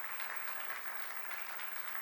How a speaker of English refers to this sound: And I never want Elevate Life Church to be a holy club. We got to be a place where anybody can come. We got to be full of people that are ready to serve, ready to help. That's a good place to clap right there because I'm talking about you.